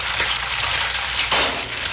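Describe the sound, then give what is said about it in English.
An egg sizzles in a frying pan: a steady, dense crackle and hiss of hot oil that holds for two seconds, with a brief surge of louder spitting partway through. “He cooks the egg.”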